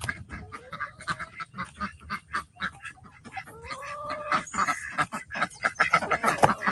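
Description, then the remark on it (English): A crowd of birds honks and quacks noisily in the morning while waiting to be let out, calls overlapping in a busy, agitated clamor that grows louder and more insistent toward the end. “Good morning, birds.”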